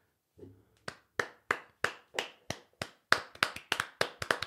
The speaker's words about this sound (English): Well played, sir. I think that almost needs to be a slow clap. That's like That's amazing. Well done, you.